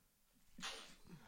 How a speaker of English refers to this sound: I just sneezed.